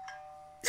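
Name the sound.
doorbell ding-dong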